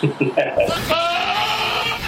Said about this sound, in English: Apparently, the goat in Oklahoma was distressed over being locked out of his pen so that two other goats could mate. So what you guys heard then were the cries of a jealous goat. Apparently.